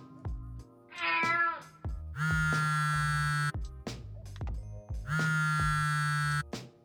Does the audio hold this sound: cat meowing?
yes